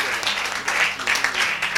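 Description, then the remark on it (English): A crowd claps for the Lord at a preacher's urging, a steady, dense patter of many hands, moderately loud and fairly even throughout, with faint voices mixed underneath. “You are clap like you are in church.”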